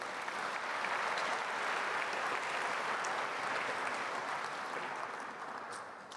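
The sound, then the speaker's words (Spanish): An audience at a church service applauds steadily for God ('Papito Dios'), a dense wash of many hands clapping at an even level that eases off slightly toward the end. No one speaks over it. “Démele un aplauso a Papito Dios, por favor.”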